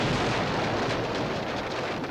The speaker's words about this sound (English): It's the early hours of the 10th of February, 1567, and a huge explosion rocks the city of Edinburgh.